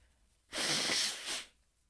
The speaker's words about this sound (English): Quality content, just listening to you obnoxiously blow your nose.